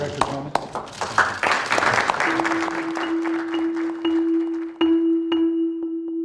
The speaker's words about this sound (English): Trump reaches his other arm around Comey's back. Comey kind of leans in, but not really. He was quite mortified by the entire episode. Then there's this awkward applause.